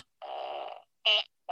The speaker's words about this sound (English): And I have my props. I have a fart machine.